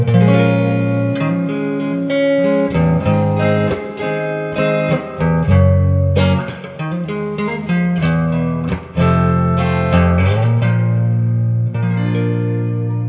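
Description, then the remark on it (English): A clean electric guitar on the neck pickup plays warm, round chords and single notes with a steady strum, fairly loud, with a light ambient tail and no voices. “Let's go to neck.”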